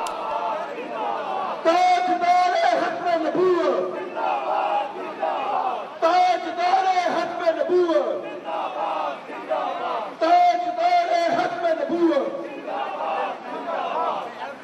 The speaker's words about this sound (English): And even in the UK, we had demonstrations outside the French embassy by those who were shouting for people to respect Islam.